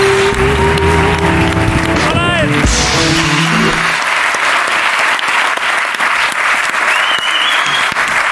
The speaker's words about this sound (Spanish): Pido un aplauso para Ingrid García Johnson en la Resistencia.